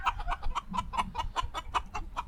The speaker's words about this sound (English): Chicken. Yeah, that's the weirdest chicken I've ever heard, but okay.